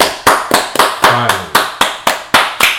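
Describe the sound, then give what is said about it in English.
Steady, rapid hand clapping, about eleven sharp, bright claps at an even pace, with a brief low voice murmuring underneath partway through. “Let's clap it up.”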